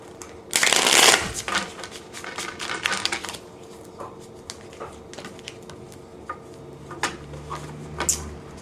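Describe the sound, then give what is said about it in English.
A deck of tarot cards is riffled in a loud burst, followed by softer sliding, tapping and flicking of cards over several seconds, with no talking. “More shuffles here.”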